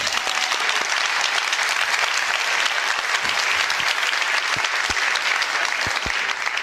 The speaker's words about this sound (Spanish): Aplauso de golf.